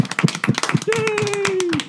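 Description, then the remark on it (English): A round of applause: rapid, dense clapping from several people, steady and fairly loud throughout, with a long sustained vocal cheer rising over the claps partway through. “I think we should give them a round of applause for doing such a good job with their podcast today.”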